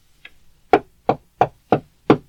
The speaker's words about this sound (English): Oh, we're here. Let's get out. All right, I'll knock on the door.